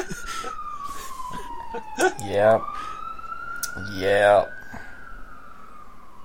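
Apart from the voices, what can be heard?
emergency vehicle siren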